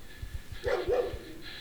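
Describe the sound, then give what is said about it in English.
A puppy gives two quick barks in close succession, moderately loud, with soft rhythmic low thumps in the background and no one speaking. “No, I will not shoot a dog.”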